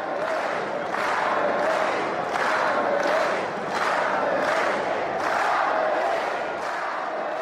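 A large Japanese crowd in Japan in 2012 chants in unison around the podium after Kamui's podium finish, a steady rhythmic roar with regular swells roughly every second, loud and continuous throughout without any single voice standing out.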